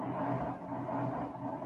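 A washing machine runs with a steady, low mechanical whir and rumble, holding an even level throughout with no voices over it.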